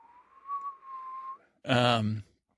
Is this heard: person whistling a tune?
yes